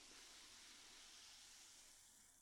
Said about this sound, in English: Got a bit of fizz on the mic then. That was quite nice. That's a bit, yeah, it's still fizzy.